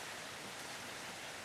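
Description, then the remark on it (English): A steady, even hiss of heavy rain pours continuously outdoors during a storm with lightning, a dense wash of sound with no speech and no distinct individual drops standing out. “But yeah, nonetheless, it's pouring rain out here.”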